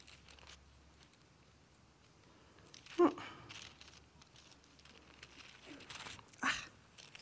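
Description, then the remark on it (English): Quiet paper rustling with two sharper crinkles, one near the middle and one toward the end, amid soft handling noises and no clear speech. “Oh, paper.”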